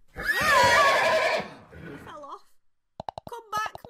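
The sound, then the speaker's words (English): A loud horse whinny rises and shakes for about a second, then fades into softer snorting tones, followed by a short burst of sharp clicking sounds. “But outside the town she was knocked from her horse.”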